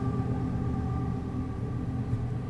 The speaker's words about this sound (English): A train's going by.